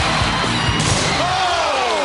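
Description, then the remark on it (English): A heavy uppercut punch lands with a thudding smack in a wrestling ring over a loud, steady crowd roar, followed by a rising whoop from the audience. “An uppercut by the Boss Man!”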